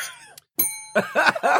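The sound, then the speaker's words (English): A bright bell rings once with a sharp strike and a clear, sustained metallic tone, followed by several rough, throaty bursts like coughing. “You and that damn bell.”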